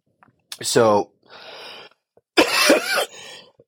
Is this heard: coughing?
yes